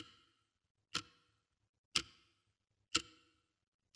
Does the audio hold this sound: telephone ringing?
no